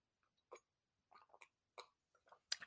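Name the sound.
sipping tea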